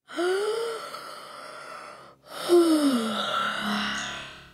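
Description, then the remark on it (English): Two long, breathy yawns open a song, one after another, each starting with a voiced rise and sliding down in pitch, loud with an airy, effected, slightly echoing quality and no speech. “It opens with a big yawn”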